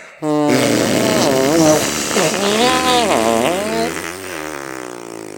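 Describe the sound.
A long, loud raspberry blown with the lips, buzzing continuously for about five seconds with wavering pitch, imitating a fart.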